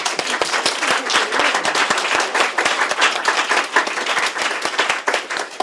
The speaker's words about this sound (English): So first of all, a huge round of applause and thank you to our amazing panel.